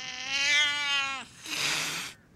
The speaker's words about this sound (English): The cat spat again.